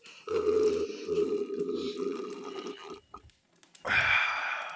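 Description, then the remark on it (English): A voice imitates the character Cassilian loudly slurping beer: a long, throaty, gurgling draw of nearly three seconds, a brief quiet gap, then a sharper, hissing slurp that ends abruptly. “At this point now, Cassilian is taking like really loud slurps of his beer.”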